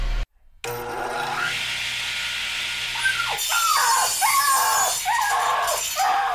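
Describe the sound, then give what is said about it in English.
Loud sawing: harsh rasping noise that settles into repeated strokes roughly once a second, with shrill squeaky tones riding over them. A brief gap of silence comes near the start. “Oh, Lord, that man just sawed a puppy in half.”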